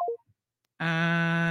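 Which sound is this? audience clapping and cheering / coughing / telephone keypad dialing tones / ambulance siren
telephone keypad dialing tones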